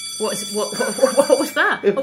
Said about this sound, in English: What was that? What was that noise in my ear hole? It was a theatre bell. Oh, not that damn bell again.